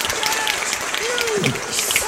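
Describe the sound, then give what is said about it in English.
A club audience applauds and snaps fingers steadily for a spoken word performer from Long Island, New York, dense overlapping claps and snaps forming a continuous crackle, with faint voices and a brief whoop rising through the noise. “So please snap your fingers and give your applause to, from Long Island, New York, via the J Train”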